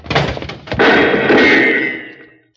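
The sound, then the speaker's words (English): A door is burst open as people rush through it fast: a quick run of heavy wooden thumps, then a loud crash followed by rattling debris that fades out over about two seconds. Forceful, with no voices. “When I give the word, we'll go through this door fast.”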